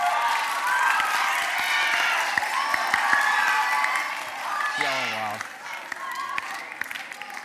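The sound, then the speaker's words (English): A crowd applauds and cheers steadily for a clip from the film Ratatouille, a dense wash of clapping with sharp individual claps poking through. Partway in, a voice briefly exclaims over it, then the clapping thins toward the end. “We can clap for Ratatouille.”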